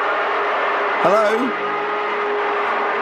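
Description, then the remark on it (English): A vacuum cleaner runs with a steady, unbroken whooshing drone and a constant hum tone underneath, while a voice briefly calls out once over the noise. “I think he's hoovering.”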